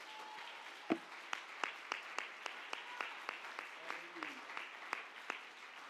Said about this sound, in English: I believe that God can and that God will. If you believe that, somebody clap your hands like you really believe that.